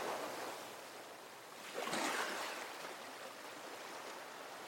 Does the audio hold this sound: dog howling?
no